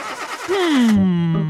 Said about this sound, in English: This isn't going to work if your car won't start, Snout. Just give it a second. You're flooding it. I know what I'm doing.